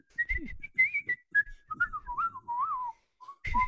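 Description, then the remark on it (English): A person whistles a short tune unsteadily, the notes wobbling and sliding off pitch, with breathy gaps between phrases; moderately loud, no talking. “And he can't whistle.”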